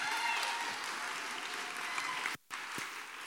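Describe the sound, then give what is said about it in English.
A crowd applauds an audience member steadily, a dense wash of clapping that holds at an even level for about two and a half seconds, breaks off abruptly, then resumes briefly. “Give her a round of applause, folks.”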